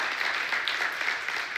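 A crowd breaks into steady applause for a pastor, many hands clapping at once into a dense, even wash of noise that holds at a constant level throughout, with no voices standing out.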